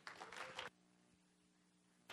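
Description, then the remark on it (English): A brief patter of clapping from just two people welcoming a guest speaker at a church lasts under a second and then stops, leaving a low steady hum before another short burst of noise at the very end. “Yeah, it's thanks for the two of you who clapped.”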